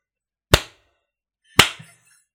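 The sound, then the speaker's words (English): Two sharp hand claps about a second apart, each a loud, crisp smack that fades quickly, in a slow, deliberate rhythm with silence between and no talking. “That's a slow clap for you, my friend.”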